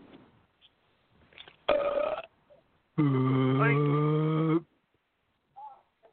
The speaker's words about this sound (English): But until then, YouTube, this belch is for you. When ready, fire!